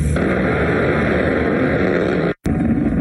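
An A-10's Gatling gun fires a loud, sustained mechanical roar like a ripping buzz-saw. It drops out for a split second near the end, then resumes. No one speaks.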